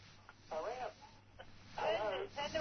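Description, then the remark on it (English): A caller's radio playing over a phone line: thin, muffled, band-limited voice sounds in two short bursts, with a steady low hum running underneath. “Yeah, turn the radio off.”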